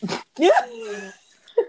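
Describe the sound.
A single sharp, breathy sneeze from allergies bursts out, followed by a whiny, pitch-sliding vocal groan and a brief voiced sound at the end.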